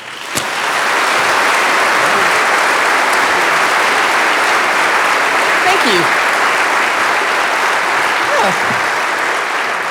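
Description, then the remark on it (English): Sustained audience applause at a town hall forum welcoming a speaker, a dense steady wash of many hands clapping at even loudness for the whole stretch, with faint voices occasionally surfacing beneath it. “If you keep applauding, I won't have to talk at all.”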